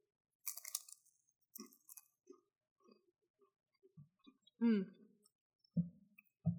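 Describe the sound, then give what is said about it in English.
Chewing a bite of apple-smoked Gouda cheese served with Malbec wine: soft, irregular mouth clicks and smacks in short bursts, with a brief appreciative hum partway through and no clear speech. “You know, so please have a bite of the cheese and then follow it up with a sip of this wine.”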